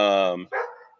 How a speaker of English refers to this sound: Dude, my dogs, we're just going to hear them apparently. Probably because my son's over messing with them.